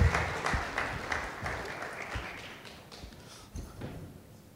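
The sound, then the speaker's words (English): An audience breaks into a round of applause for a man called up to join the speaker, a dense patter of many hands clapping that starts loud and gradually tapers off over several seconds. “Yeah, give him a round of applause just because we love him.”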